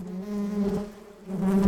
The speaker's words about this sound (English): Okay, I did some audio trickery there by adding in the sounds of bees, but give it a year and you'll likely see real bees in this brand new pollinator garden in Reaboro.